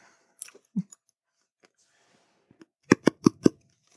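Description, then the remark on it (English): A few faint clicks and rustles, then four crisp scissor snips in quick, even succession, each a short sharp crunch. No one speaks. “I have to cut this.”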